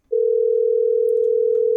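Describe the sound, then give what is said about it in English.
A steady, unbroken telephone dial tone hums at a constant mid pitch, loud and even from just after the start to the end, with no voices over it, while calling the Pig and Whistle, a bar and restaurant. “Well, we're calling Pig and Whistle.”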